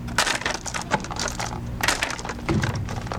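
Small glass vials clink and clatter as a worker counts them out and packages them for sale at the ATCC Cell Library in Rockville, Maryland, handled in quick, irregular bursts over a steady low mechanical hum. No one speaks.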